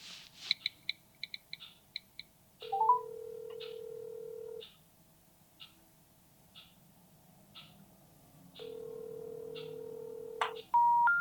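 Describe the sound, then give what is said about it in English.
A quick run of short keypad beeps as a phone number is dialed, followed by two long, steady ringback tones and a final rising electronic tone sequence as the number cannot be reached, all without any talking. “The number you're trying to call cannot be reached right now.”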